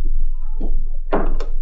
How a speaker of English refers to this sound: Went on to my apartment. When I got there and put my key in the lock, it refused to turn. The door was already unlocked.